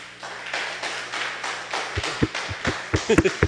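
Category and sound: crowd, audience clapping hands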